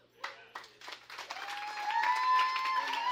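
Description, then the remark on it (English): An audience breaks into applause, starting with a few scattered claps that quickly swell into steady clapping, joined by high cheers and whoops as it grows louder. “That was a good place to clap right there.”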